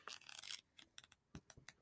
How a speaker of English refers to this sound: Hate turning pages. I don't understand why it even has you turning pages when no choices have been made.